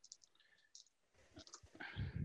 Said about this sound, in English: So I roll five dice and successes are seven higher. I'm going to use a luck point to re-roll these four dice.